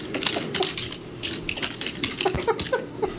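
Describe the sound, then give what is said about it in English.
Rapid, irregular clicking and clacking of keys on a keyboard, steady typing with bright, sharp taps and a few louder strokes, with no voices. “Can you hear my typing?”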